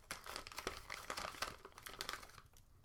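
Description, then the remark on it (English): Wrapping paper crinkles and rustles continuously, with dense irregular crackles and a few sharper snaps as it is handled, no voices present. “It looks like wrapping paper.”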